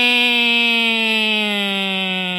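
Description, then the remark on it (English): A voice imitates an ambulance siren with one loud, sustained buzzing tone that holds steady and sags slightly in pitch over about two and a half seconds, with no words. “I'm going to say to you ambulance sound four, and I would like you to come up with a better sound for an ambulance, okay?”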